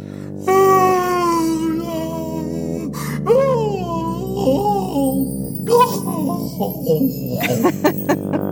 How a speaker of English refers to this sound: Oh no, that was whale noise. All the whales are here. Back to the sea, whales. Back to the sea. Maybe that was a whale yawn that you played.